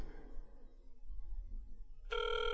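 Low background rumble gives way near the end to a loud, steady electronic ringing tone, like a phone line ringing on an outgoing call, cut off after about half a second.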